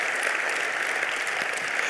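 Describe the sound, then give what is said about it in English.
An audience at a church service gives a steady round of applause for God, dense overlapping claps forming a loud, even wash of sound with no pauses and no voices standing out. “Come on, let's give him a round of applause.”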